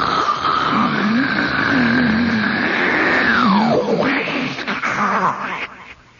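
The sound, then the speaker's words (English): A voice imitates the sea rolling back out of Thunder Hole, a cave the ocean has worn into the side of a sea cliff: one long, loud, breathy roar with a low droning tone that slides downward, then tapers off and fades after about six seconds. “And the sea comes roaring into it, and then it goes out with a sound. It's called Thunder Hole.”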